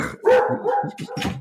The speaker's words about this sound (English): Oh dear! Well, we got the guard dog. Opening the door to chase the postman.